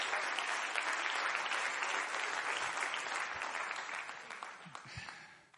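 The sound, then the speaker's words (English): An audience claps their hands to the Lord in praise, a dense, sustained burst of applause, steady and loud before gradually thinning out and fading toward the end. “Come on, clap your hands to the Lord and give Him praise right now.”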